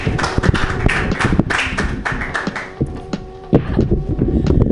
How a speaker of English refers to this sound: Clapping.